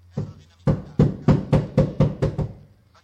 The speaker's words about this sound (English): Lady, open this door. You want to try knocking a little louder so the whole town can hear you, hmm?